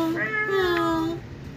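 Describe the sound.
A person's voice imitates a cat's meow in one drawn-out, wavering call lasting over a second, fairly loud, then trailing off into quiet.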